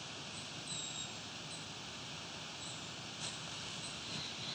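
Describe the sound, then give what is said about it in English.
A wood thrush sings far off, its faint, fluting phrases surfacing a few times over a steady, hissing background of outdoor noise. “In the distance there seems to be a wood thrush singing.”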